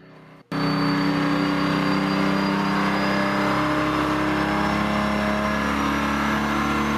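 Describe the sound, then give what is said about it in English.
An engine on a test stand at a test facility roars to life after a brief quiet moment and then holds a loud, steady, high-pitched rev, its rising harmonic whine sustained without pause and no voices over it. “That's revving pretty high.”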